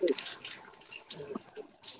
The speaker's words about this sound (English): Oh, who's letting the water drop?